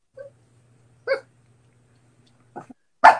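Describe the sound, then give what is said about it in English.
A young Shih Tzu dog barks in a few short, sharp yips spaced irregularly, the last one loudest, with a faint low hum underneath and no talking. “Our first dog guest.”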